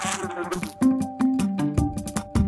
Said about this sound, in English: You hear that? A fly is buzzing around. You just used your sense of hearing.